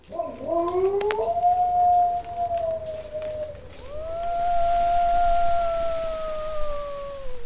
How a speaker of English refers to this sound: We collected several thousand howls from wolf populations around the world, mostly captive animals from zoos, but also some animals in the wild.